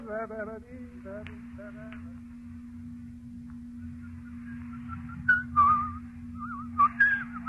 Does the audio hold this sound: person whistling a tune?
yes